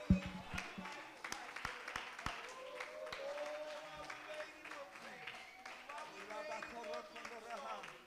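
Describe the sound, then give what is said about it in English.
An audience at a church service claps their hands to magnify the Lord, starting with a few sharp, scattered claps that swell into steady, lively applause, mixed with raised voices and a busy, echoing sound. “Somebody clap your hands and magnify him for a minute.”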